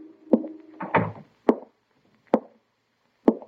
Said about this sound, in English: I caught a streetcar, and 20 minutes later, I was walking toward the swayback two-story building where Venuti had his insurance office, just across the street from Garvin's house. I opened the door and walked in.